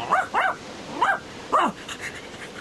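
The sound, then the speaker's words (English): A dog barks four times in quick, uneven bursts, sharp and slightly yelping, clear with no one talking, as it leaps around a boy holding a kitten. “What's up with Scamper? Now then, dog, what's up with you?”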